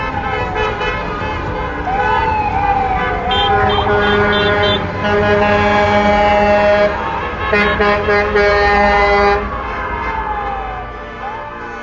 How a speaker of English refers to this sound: residents in Newmarket, Ontario, Canada, lined up on Davis Street to give props to the town's hospital staff, bumper to bumper honking outside South Lake Regional Hospital Thursday afternoon. Let's listen to this beautiful act of gratitude.